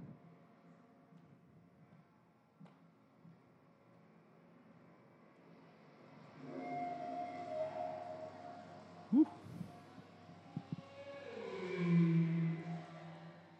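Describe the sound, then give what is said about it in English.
Whale song is added as a sound effect over an ocean sound effect: low, drawn-out whale calls rise in over a dull rumble of ocean, long moaning tones that bend and glide, with a few faint knocks scattered between them. “And some whales.”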